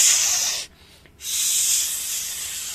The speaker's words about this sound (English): Are you a snake, or is that a fajita sizzling there? What's that sound effect? That's a fajita sizzling. Come on, we've all been there where you order the fajita and it comes out sizzling. Just like that.